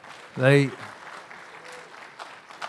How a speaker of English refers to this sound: Hey, how about a good hand clap for your pastors?